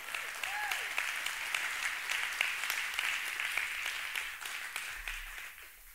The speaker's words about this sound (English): On Friday, they signed papers for adoption. Come on, you can clap for that.